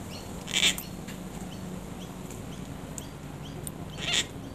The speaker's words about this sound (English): But also the call of my favourite parrot, I think, the gangang. It sounds like the door in a haunted house. And here they are in Canberra with a recording from a different Kate.